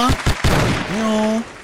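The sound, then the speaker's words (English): A hand-clap sound effect: three sharp, loud hand claps in a quick, even rhythm, followed by a brief held vocal tone that rises slightly in pitch and then cuts off. “Let me give her hand claps.”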